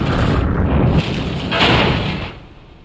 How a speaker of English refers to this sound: He pumps the brakes, but the car won't stop. It slides off the road. Everything's a blur. The car tumbles down the embankment and lands in a ditch, hitting bottom hard.